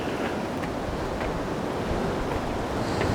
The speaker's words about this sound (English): I'm at the point now where the sea meets the bottom of the cliff